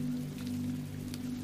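Steady rain falls continuously, a soft even hiss with a few sharper drop patters, over a low droning hum. No one speaks.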